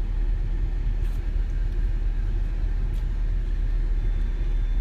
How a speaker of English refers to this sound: I'm sitting here in traffic at Crater Lake